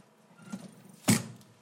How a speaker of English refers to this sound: Go ahead and close the casket.